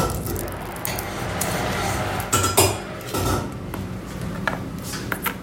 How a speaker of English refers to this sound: Except I'm like having trouble hitting it. I don't know why. It's because the knife is probably shitty. Ooh. I just smashed the garlic. That's fine.